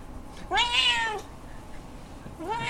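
A cat rolling around on the floor meows loudly, one long rising-and-falling meow followed after a pause by the start of a second, with no talking.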